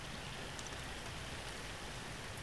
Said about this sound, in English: And here we are, sitting in the rain, watching the world go by.